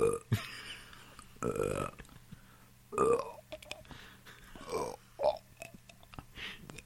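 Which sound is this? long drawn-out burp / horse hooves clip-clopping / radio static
long drawn-out burp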